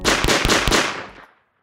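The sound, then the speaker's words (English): A quick burst of three or four loud gunshots fired into the sky in succession outdoors at a gender reveal party, releasing blue or pink gunshot residue, each crack blending into a rolling echo that trails off and fades to silence. “The parties where new parents cut into a cake that reveals either pink or blue icing, balloons that get popped and shower down pink or blue confetti, guns shot into the sky, releasing blue or pink gunshot residue.”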